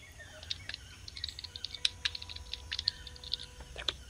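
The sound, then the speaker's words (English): Rapid, irregular clicks of someone typing on a computer keyboard, fairly crisp, with a steady low hum underneath and no talking. “Oh, how we missed the typing.”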